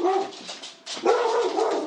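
A dog barks loudly at a man in two sustained, yappy bursts separated by a brief pause, with no one speaking over it.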